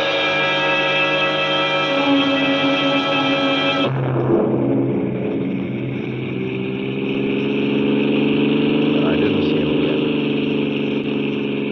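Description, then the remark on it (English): A car engine hums steadily and loudly throughout, its tone dropping and settling partway through as the car slows to stop at a small junction just across the border into Oklahoma to let a train pass, with a low continuous rumble and no talking. “I stopped a car at a sleepy little junction just across the border into Oklahoma to let a train pass by.”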